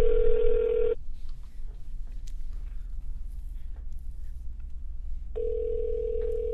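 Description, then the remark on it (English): A phone call rings out on the line: a steady, buzzing ringback tone sounds for about a second, a few seconds of quiet hum follow, then the tone starts again. “Let me see if there's anybody. I got to call real quick.”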